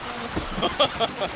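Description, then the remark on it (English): A paddle boat on a southern lake, paddled by someone and working like a water wheel, churns through the water, its wheel slapping out a quick series of five or so splashy pulses over a steady wash of moving water. “How peculiar is that boat? Someone's paddling it. Wow, it's like a water wheel.”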